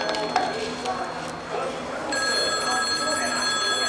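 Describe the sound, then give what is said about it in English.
A telephone starts ringing partway through, a steady, bright electronic trill that continues to the end over a busy background with faint clinks and indistinct voices early on. “Hand me that phone.”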